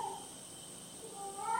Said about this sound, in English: Can you hear my cat?